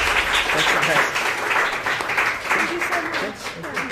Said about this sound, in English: Round of applause for the race director, right.